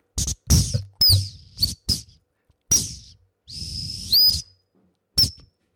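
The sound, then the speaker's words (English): A plastic T12 tin whistle, with bits broken off, plays a short, halting tune: breathy, high-pitched notes in quick bursts with sliding swoops and brief pauses between phrases. “I just have me and my whistle, my trusty T12, on which I'm going to play you a tune.”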